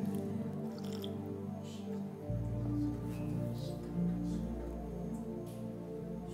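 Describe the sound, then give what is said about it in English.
Someone takes drinks of water, with soft wet slurps and swallows over a steady, humming tonal background that deepens partway through. “We preach for 3 minutes and then drink water like this.”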